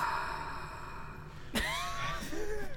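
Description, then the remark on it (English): A short, breathy vocal sound with a rising whine is followed right at the end by a quick sniff through the nose against a quiet background. “Do you like the sniff at the end of that?”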